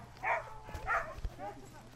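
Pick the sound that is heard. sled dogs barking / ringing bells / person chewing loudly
sled dogs barking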